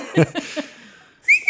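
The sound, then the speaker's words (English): A man gives a short, sharp, bright whistle on its own near the end, following a few brief voiced sounds at the start, signalling oxen pulling a cart to start trotting. “With that, he whistles, and the oxen begin to kick up, and they begin to trot toward the city.”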